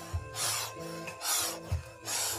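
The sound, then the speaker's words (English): A hand saw, worked by a woman delimbing a tree trunk, cuts through a branch in steady back-and-forth strokes, three harsh, hissing rasps at an even rhythm, each starting with a soft low knock as the blade changes direction. “You watch her powerful shoulders kind of rotating in sync with the repetitive noise of the saw blade, sort of...”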